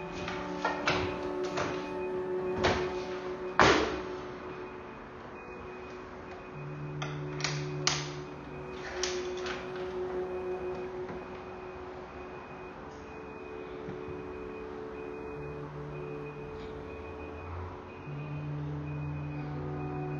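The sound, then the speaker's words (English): An alarm clock beeps on and off in a steady, repeating pattern, with scattered clicks and knocks and a low hum underneath. No one speaks. “Your alarm clock's going off, just want to let you know.”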